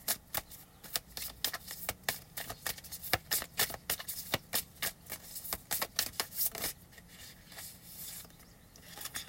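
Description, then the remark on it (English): A deck of oracle cards is shuffled in a rapid run of crisp, papery riffles and snaps, fairly loud, settling into softer rustling toward the end. No one speaks. “Okay, sorry, we're still shuffling.”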